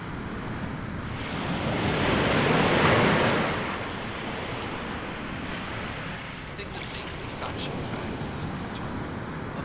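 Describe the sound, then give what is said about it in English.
Ocean waves wash onto a shore in a steady, roaring hiss; one wave swells loudly and breaks, then recedes into a continuous rush of surf with some wind buffeting. “I am left on a boundless gray coast besides a dark ocean.”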